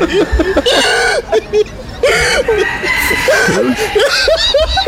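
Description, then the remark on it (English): A chicken farmer laughs in rapid, high-pitched bursts that sound remarkably like a hen's cackling and clucking, loud, repeating continuously with brief breaths between the squawky peals. “This is a chicken farmer who laughs like a chicken.”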